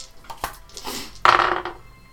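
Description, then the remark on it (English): Two dice rattle and clatter across a hard surface for a stealth check, landing on 20 and 18: a few sharp clicks at first, then a louder, longer burst of tumbling that settles quickly. No one speaks. “I roll a natural 20 and a natural 18.”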